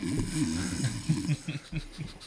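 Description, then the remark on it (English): A person snoring, with a run of short, rumbling snorts coming in quick, uneven succession. The snores are fairly loud, with no talking over them. “I couldn't tell who was snoring.”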